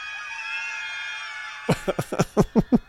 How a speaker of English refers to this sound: They're just screaming. That's just what they're doing at the protest. They're just standing out on a street, a snowy street, just screaming. Canadian. Oh, it's Canadian.